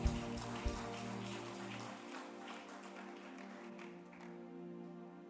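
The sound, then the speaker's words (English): An audience gives the Lord a clap offering, clapping together in a dense, steady wash of applause that holds for several seconds before easing slightly, with a sustained low musical drone underneath. “In the name of Jesus, give the Lord a mighty clap offering.”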